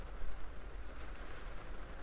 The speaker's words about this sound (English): I hope you can hear me okay, because I can barely hear my own words at the moment. The rain is so loud, but it is nice.